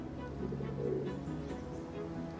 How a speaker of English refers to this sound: The seagulls were even noisier.